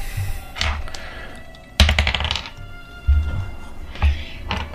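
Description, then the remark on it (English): Dice clatter across a tabletop in a quick burst of hard little clicks and taps, followed by a couple of softer knocks as they settle, fairly clear; an attack roll for a Ray of Frost spell in a tabletop role-playing game, landing a 9 and a 6. “I rolled a 9 and a 6.”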